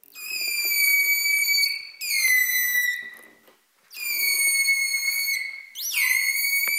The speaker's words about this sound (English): Making that louder call takes more energy. Holt and Noren found that when the dolphin was whistling harder and louder, its metabolic rate rose by up to 80% above normal resting levels.